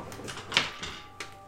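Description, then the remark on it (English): A few quick, light clicks and clatters of dice tumbling across a tabletop, with one sharper knock partway through and a final tap; fairly quiet, with no talking. “roll dice.”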